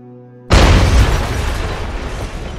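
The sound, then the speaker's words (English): After a moment of low humming quiet, a single loud explosion bursts in abruptly as glass flies about a car driven late at night through Pennsylvania, its crackling roar lingering and slowly fading over the next couple of seconds. “Randy Budd from the back seat heard an explosion as glass flew about the car”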